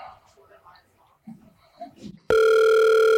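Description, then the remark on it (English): Faint murmured voices give way to a loud telephone ring tone, a phone line ringing to call a waiting guest, that cuts in abruptly and holds as a steady electronic buzz for the last second, noticeably louder than everything before it. “I believe we have a guest ready in the waiting on the phone lines.”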